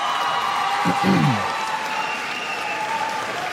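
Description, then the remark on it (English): A large audience gives a band a giant round of applause: steady, dense clapping with a few cheers and whoops rising briefly near the start, sustained throughout and fairly loud. “Can you guys give … a giant round of applause?”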